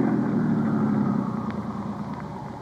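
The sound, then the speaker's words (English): A car engine, left running while the car is stopped at a wide spot in the road, idles steadily with a low, continuous rumble, fairly loud, easing slightly quieter toward the end. No one speaks. “Just leave the engine running and both of you get out the right-hand door.”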